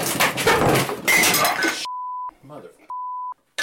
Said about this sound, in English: the entire chair just collapsed from under me. I crashed to the floor.